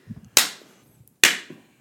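Two loud, sharp hand claps roughly a second apart, each snapping bright and then trailing off in a short ringing decay, with a faint low murmur just before the first.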